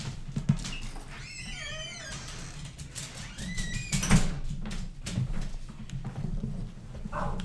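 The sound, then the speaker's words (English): A door creaks open to let a pet outside, with a drawn-out, wavering high squeak from its hinges, then squeaks briefly again before a solid knock, over a low background rumble. “Basil, did you need to go outside? Come on. Sorry for the squeak.”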